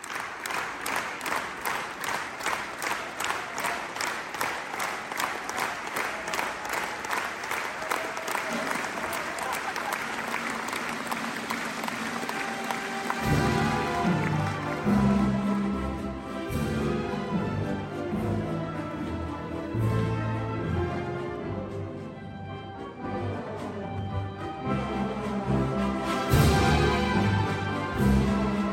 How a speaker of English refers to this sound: But let's listen to some of the rhythmic applause that was heard at the very end of the evening at the Salzburg Festival.